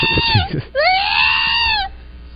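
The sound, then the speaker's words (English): A woman lets out a loud, high-pitched excited scream on seeing rings: a short shriek, a brief gap, then a longer sustained squeal that rises and holds before cutting off, without any talking. “Was she yelling at the earrings? When she saw the rings, yes.”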